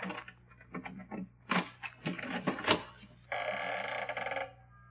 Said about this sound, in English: Now, where did I put that key? Don't tell me you're not going to pick the lock. Holmes, you're losing your grip.